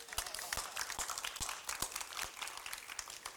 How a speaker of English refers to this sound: You can applaud.